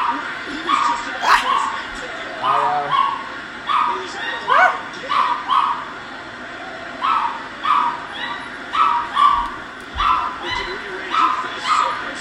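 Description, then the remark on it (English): A female dog howls and barks in a steady run of short, yelping bursts that repeat throughout, fairly loud, with brief gaps between the cries. “It's my dog. She howls all the time.”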